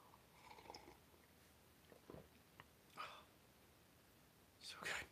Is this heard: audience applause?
no